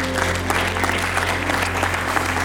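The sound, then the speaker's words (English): An audience at a church service applauds steadily in praise of God, a dense wash of clapping with scattered cheers and voices, with a low steady hum running underneath throughout. “Can we give God the biggest praise?”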